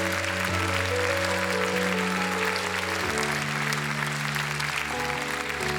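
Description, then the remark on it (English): A church audience claps steadily and densely for several seconds during a service while sustained keyboard chords hold underneath, the harmony shifting once midway; no one speaks. “Now, do I see some more? Clap some more.”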